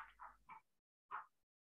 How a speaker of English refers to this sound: Oh, hello, dog. Is that Bobby?